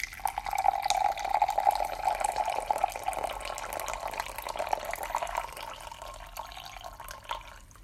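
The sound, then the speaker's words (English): Brewed hojicha tea, steeped for about a minute, being poured out in a steady, continuous stream of liquid, fairly loud, with a gurgling splash that thins and trickles off near the end; no one speaks. “So let's go ahead and pour it out.”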